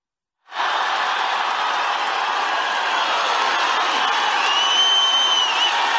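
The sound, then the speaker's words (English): A massive political rally crowd cheers in a dense, sustained roar that starts abruptly after a brief silence and holds steady and loud, with a few high whistles rising near the end. “I want you to hear the crowd there and look at this massive crowd.”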